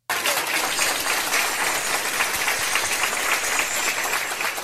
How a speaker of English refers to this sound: So one day the hospital called him to pick up a patient, but instead of just passing over the patient, doctors and nurses lined the entrance to surprise him with a standing ovation. Let's take a listen.